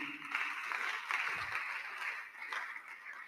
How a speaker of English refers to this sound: The way you are clapping is very weak.